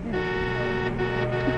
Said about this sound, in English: Traffic seems to get worse every day.